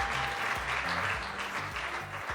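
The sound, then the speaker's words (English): A crowd applauds steadily, a dense, continuous patter of many hands clapping at an even loudness throughout, with faint low murmuring beneath. “Can we give him a round of applause real Можем quick?”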